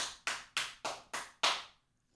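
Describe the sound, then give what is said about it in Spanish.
A seal claps its flippers six times in a quick, steady rhythm, each slap sharp and ringing briefly, the final one loudest, then silence. No voices. “Yo creía que iba a aplaudir un poco más la foca para yo poderme tomar un poquito más de café, pero está bien.”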